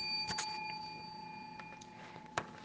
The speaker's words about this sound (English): We just bless God today as we ring our bell.